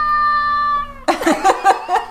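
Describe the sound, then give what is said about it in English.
A male cat lets out one long, drawn-out meow, then follows with several shorter, rougher yowls in quick succession, loud with no one talking. “Sorry for the meowing. He's in a mood.”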